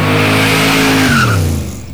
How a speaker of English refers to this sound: Cool. What was happening there? So like a car was coming into the studio then.